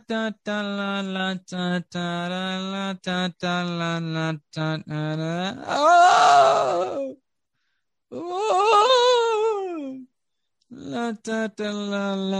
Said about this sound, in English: You can hear this carnival music with the sounds of these ominous shrieks and kind of cackles over the carnival music. It's now louder to you.